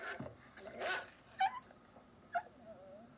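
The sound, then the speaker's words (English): A dog named Lester gives a few short, high yips and whimpers, spaced about a second apart, fairly quiet, with a thin whining tone trailing after the last one. “Lester's barking again and getting on my nerves again.”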